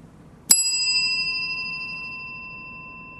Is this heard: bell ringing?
yes